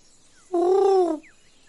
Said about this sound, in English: My favorite would be the lyrebird one. Listen to this one. This is a pigeon.